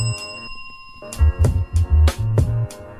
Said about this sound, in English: Honk your horn for me while I ring my bell for you.